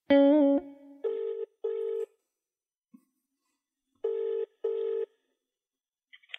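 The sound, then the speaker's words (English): A phone call to the speaker's mother connects and rings out with a buzzing double-pulse ringtone, two paired rings separated by a pause, clear with no one talking. “Ma, I said don't answer the phone.”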